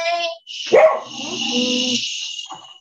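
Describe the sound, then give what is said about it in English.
A dog barks, a sharp, loud bark followed by drawn-out whiny yelps, over a steady high-pitched hiss of background noise. “But we don't want the dog barking during this, okay?”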